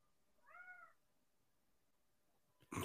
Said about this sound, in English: Was that a child? Oh, it was a cat. It was a cat. Was that what you laughed? You like smirked about a couple minutes ago. Yeah. I couldn't hear it over myself. Ran into the room and it's meowing up a storm here